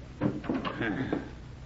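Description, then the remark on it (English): A wooden door on a ship swings and is pushed shut, with a few creaking, knocking bumps over about a second and a half, moderately loud against a faint background hum. “Well, now the door's open. Come in and shut it.”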